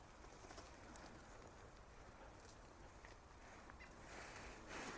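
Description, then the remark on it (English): Quiet outdoor ambience with a few faint, scattered calls from birds disturbed by a person walking past, rising now and then above a steady wash of background noise; no one speaks. “And now I'm aware that actually I'm causing a little bit of consternation and stress by some of the birds, so I'll move on.”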